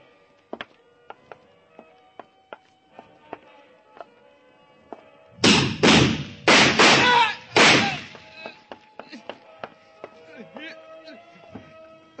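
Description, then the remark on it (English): A door is kicked open: a quick run of heavy, booming crashes, four in about two seconds, loud and harsh against a quiet background with scattered small clicks and knocks. “I'll kick it open.”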